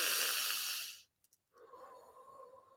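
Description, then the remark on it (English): A single slow, deep breath: a long, airy breath of about a second, a brief pause, then a softer, drawn-out breath. It is quiet, with no talking. “Breathing in and exhaling slow, breathing in and exhaling slow.”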